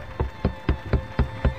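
Six firm knocks on a wooden door, evenly spaced in a quick, steady rhythm, each a dull thud with a sharp attack, standing alone over a faint background hum.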